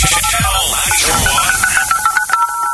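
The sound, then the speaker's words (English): The Beat the Buzzer segment sounder on Omaha radio station Channel 94.1's The Big Party Morning Show: sweeping whooshes at the start, then a run of bright, rhythmic, ringtone-like beeping notes, loud and with no talking over it. “This is the sounder for little sound music for Beat the Buzzer.”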